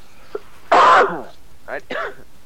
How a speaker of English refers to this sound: I am so sorry for the cough.